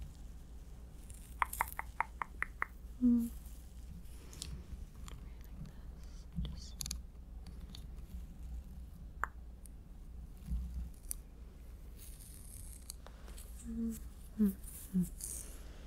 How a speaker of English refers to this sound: Scissors.